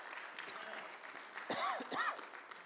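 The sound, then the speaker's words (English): A church audience claps steadily as a hand clap of praise, the dense patter continuing throughout, while a couple of voices whoop or call out briefly over it near the end. “And I think that you ought to give yourself a good hand clap of praise it isn't the fulfillment of it, but we're doing all of it.”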